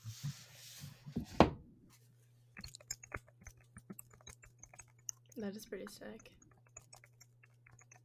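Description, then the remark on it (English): Rapid, uneven clicking of keys on a computer keyboard, fairly quiet, continuing for several seconds, with a person speaking briefly at the start and again partway through. “Oh, keyboard.”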